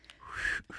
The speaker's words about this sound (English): If I could do the whistle. Whoo. Can someone do it?